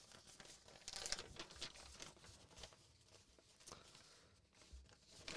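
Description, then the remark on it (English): Paper rustles and crinkles as a person gets out their paper for a game, a continuous series of crisp, scratchy bursts with a few sharper crackles, fairly quiet overall and with no voices. “So let me just get my paper and that.”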